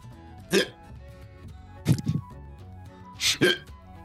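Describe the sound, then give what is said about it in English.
Three sharp hiccups spaced about a second and a half apart, each a short, abrupt gulp of breath, audible over a low background murmur. “Did I do this to you last campaign as well? Did I give you hiccups then?”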